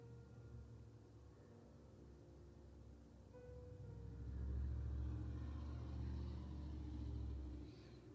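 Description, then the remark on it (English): A heavy truck rumbles past on a street, heard from inside a living room, its low engine drone swelling in the middle and fading again, with steady traffic noise before and after. No one speaks. “If you can hear trucks driving by on the street, I'm in my living room right now.”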